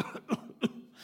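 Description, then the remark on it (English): A person coughs in short, harsh bursts, two sharp hacks about a third of a second apart, fairly loud, with a rough breathy quality between them and no talking. “So it's this idea of continual repeated action, a frequent hacking cough.”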